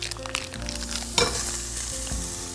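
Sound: butter sizzling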